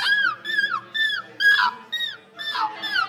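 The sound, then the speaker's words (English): A person mimics seagull cries into a microphone: about six high, squealing calls in quick succession, each sliding downward in pitch, fairly loud and with no other talking. “That is seagulls.”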